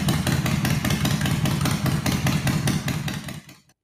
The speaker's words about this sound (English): And he is out riding a motorcycle right now. And we really, really hope that he's okay.